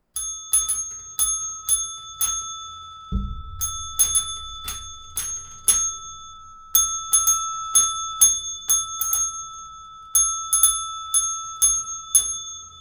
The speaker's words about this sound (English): It's one bell, it's a hand bell, and I'm going to play the tune of a song.